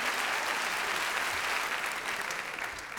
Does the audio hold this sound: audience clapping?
yes